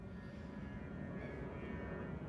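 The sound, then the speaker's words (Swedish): A steady, low rumbling drone of an airplane from Bromma air traffic passing overhead, muffled, holding an even level throughout with no voices present. “Nej, nu kommer ett flygplan.”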